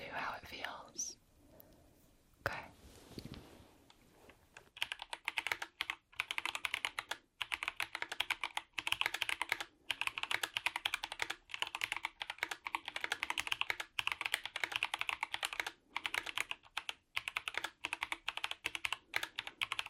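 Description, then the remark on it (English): Steady, slow typing on a computer keyboard being tested, fairly loud, keys clicking one after another at an even, unhurried pace after a brief quiet start with faint rustling. “Testing & Speed Typing on 4 Keyboards”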